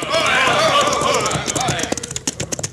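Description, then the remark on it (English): Horses' hooves gallop in as a band of mounted bandits arrives, a rapid rhythmic clatter that rises out of a loud, dense commotion and turns into sharp, distinct hoofbeats near the end. “Get down off your horses, boys.”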